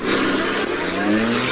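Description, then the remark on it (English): A car engine revs steadily, its pitch rising and falling slightly as the car is turned around, with a hint of tyre noise underneath. “turn the car around.”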